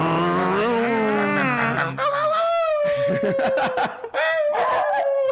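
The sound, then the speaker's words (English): A voice mimics a revving motorcycle engine, with rising and falling buzzy pitch sweeps, loud, over about five seconds with brief breaks, ending with some snickering. “Are we motorcycles? What's happening?”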